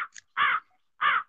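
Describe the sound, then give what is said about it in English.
Two loud, harsh caws from crows attacking someone outdoors, each about a quarter second long, spaced roughly half a second apart, with no talking over them. “You're getting attacked by crows out there, bro.”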